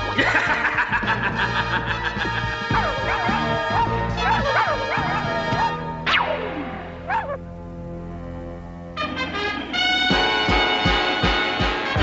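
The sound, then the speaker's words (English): Short, high-pitched yapping barks from Ms. Lion, a small cartoon dog, come in quick bursts over loud, busy background music, with a couple of sweeping whooshes partway through; no one speaks. “Ms. Lion barked at him.”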